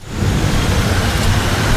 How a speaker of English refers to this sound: Beautiful rain. Rain in California. October brought surprisingly wet weather to a state ravaged by 5 years of severe drought.